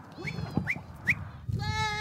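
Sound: goats bleating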